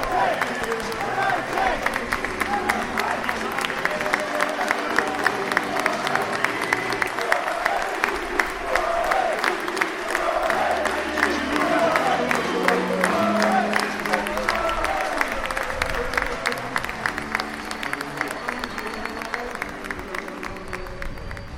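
About 280 Carlisle fans at a football game applaud and cheer without pause, dense clapping mixed with shouting voices, holding a steady, fairly loud level for over twenty seconds.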